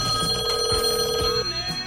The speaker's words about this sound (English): He answers for his ring. He's got something weird with his phone where it rings once, and then there's this long pause, and then there he is.